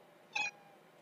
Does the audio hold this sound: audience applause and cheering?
no